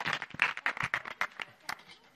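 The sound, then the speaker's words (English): A small group claps for a couple of seconds, the irregular claps fairly soft, with faint voices murmuring underneath. “Yeah, give him a round of applause, encourage.”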